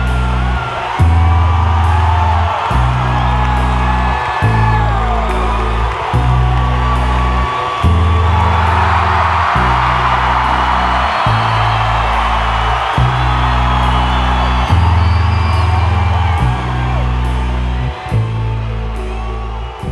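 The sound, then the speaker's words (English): An audience cheers and whoops over a heavy, steady bass beat, the crowd noise swelling louder partway through before settling back under the thumping music. “She gets the audience to cheer more for her.”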